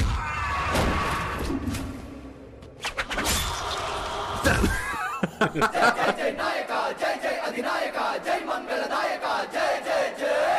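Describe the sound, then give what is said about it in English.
A loud crowd cheers a man on, shouting in a dense roar, then settles into a rhythmic, pulsing chant with repeated beats, sustained and energetic throughout. “They're cheering him on!”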